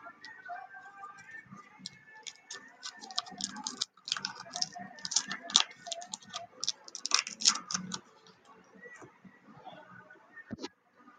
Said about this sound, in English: Immense, but I can't get the paper off.